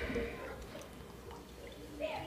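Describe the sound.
Fresh Kölsch beer pours into a glass, a steady, fizzy liquid stream lasting a couple of seconds, with muffled voices faintly underneath.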